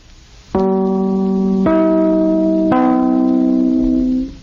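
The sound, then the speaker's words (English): Three clear, sustained chime notes of a network radio station identification, struck one after another about a second apart, each ringing on with bright overtones, the last one lingering and fading; no voices. “Three chimes mean good times on NBC.”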